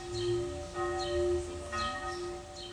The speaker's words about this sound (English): Everyday life here is filled with sonic experiences. Church bells outside the window of my flat in the Neukölln district.